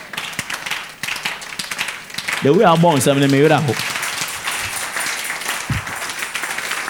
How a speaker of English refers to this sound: all those who are clapping, may you leave inheritance for your children's children.